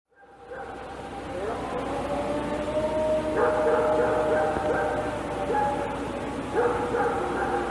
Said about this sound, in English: In the clip, you will hear two animals. The closer, louder sound is that of a barking dog.